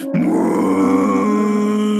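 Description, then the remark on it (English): A monstrous pig creature, a massive corn boar called the Pigzord with corn cob teeth, lets out one long, loud bellow as a challenge, a deep, rough, groaning cry that holds steady for nearly two seconds, with no talking. “This creature is called the Pigzord, and the beast looks at you with dark green eyes, and instead of grunting a little pig grunt, it bellows out a challenge before its corn cob teeth clamp back together.”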